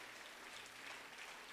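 A crowd claps steadily, a dense wash of many hands blending into continuous applause at a fairly even level, with no voices standing out.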